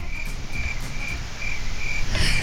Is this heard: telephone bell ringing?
no